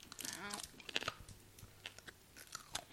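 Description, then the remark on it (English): Crisp crunching as someone chews a brittle sweet potato candy with a soft interior from Rapopo Farm, a sweet-potato-themed bakery, with irregular sharp bites and softer mouth sounds between them, quiet overall and no talking. “I'm sorry for the crunching that you have to endure right now, but it's like...”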